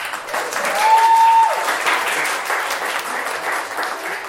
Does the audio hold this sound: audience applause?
yes